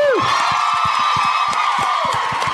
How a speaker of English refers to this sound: Oh my God. I have to say, they're all fantastic live. So round of applause for them again.